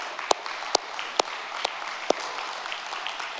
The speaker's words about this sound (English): Okay? Yeah, we can clap. Yeah.